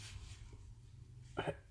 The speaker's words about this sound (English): Runny nose. Sorry about that. Sniffing on while I'm mic'd up. Otherwise I might drown in snot.